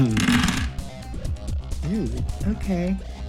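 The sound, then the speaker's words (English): A quick, dense clatter of many dice, including d8s, rattling and tumbling for about half a second as they are rolled for a first-level spell, followed by people talking. “I never get to roll this many dice.”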